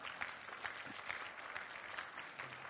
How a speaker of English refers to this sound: Would you please applaud this man? Thank you.